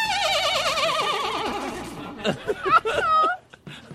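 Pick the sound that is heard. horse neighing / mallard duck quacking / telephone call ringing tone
horse neighing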